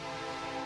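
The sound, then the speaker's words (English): A train horn sounds in one sustained, steady blare, loud and rich in harmonics, filling the moment with no voices over it. “There's always a friggin' train.”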